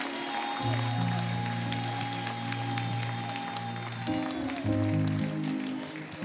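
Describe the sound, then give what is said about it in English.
An audience at Agape House church gives the Lord a clap offering, clapping steadily and continuously over sustained organ chords that shift partway through, the dense applause texture running the whole time with no voices standing out. “In Jesus' name, let's give the Lord a big clap offering.”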